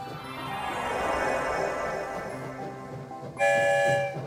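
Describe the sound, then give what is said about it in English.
A train travelling through a tunnel rumbles steadily with a hollow, droning roar, then a loud horn blast sounds near the end. No one speaks. “We're headed for the Rainbow Tunnel that will take us far, far away.”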